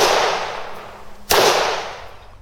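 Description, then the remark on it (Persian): A single sharp, loud gunshot crack of a firing squad execution, staged as the ending of a play set in Tehran, cuts through a steady background hiss about halfway through, then fades quickly. No one speaks. “حالا اینجا نمایش با شلیک گلوله ها به پایان میرسه.”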